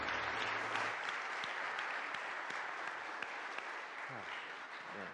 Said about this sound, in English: another round of applause for these youth.